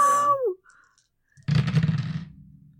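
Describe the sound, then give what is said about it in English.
A brief voiced exclamation, then a short pause before a fairly loud rattle of four metal dice rolled across a desk for a kill check in a game, a rapid jumble of clicks that settles within about a second. “Which means you guys get to hear the clatter of 4 metal dice on a desk.”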